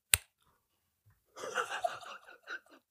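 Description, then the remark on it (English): A single sharp, loud crack of something crisp being bitten, then a pause and a second or so of rough, crackly crunching and chewing noises. “Or was it loud because it was in my mouth? Would you crunch it? Yeah. Yeah, it was loud. It's a crunch.”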